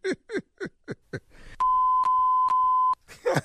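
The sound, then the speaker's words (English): Three loud, sustained electronic beeps at a steady pitch, played back-to-back with only tiny gaps between them, preceded by a run of short rhythmic vocal bursts, on The Steve Harvey Morning Show radio broadcast. “What was that last three beeps right there?”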